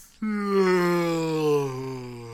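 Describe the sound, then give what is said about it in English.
A person vocalizes a long, drawn-out yawn, a single low sustained groan that slowly slides downward in pitch over about two seconds, fairly loud with no other sounds. “like a big old yawn.”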